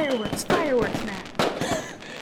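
A fireworks effect: several sharp bangs burst in quick succession, mixed with whistling, falling tones and crackle, fairly loud over a couple of seconds.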